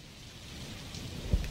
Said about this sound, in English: Oh, I heard the storm.